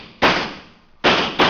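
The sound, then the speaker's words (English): Three sharp gunshots fired from the window of a trailer, with no voices: a loud crack, a pause of nearly a second, then two more bangs in quick succession, each a broad burst trailing off into a lingering decay. “I jumped to the window and opened fire.”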